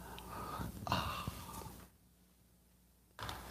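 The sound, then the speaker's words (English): Someone sips coffee, a short, airy slurp with a soft breathy hiss, followed by a stretch of near silence before a faint rustle returns. “I think I was supposed to say, it's the simultaneous sip and it happens now.”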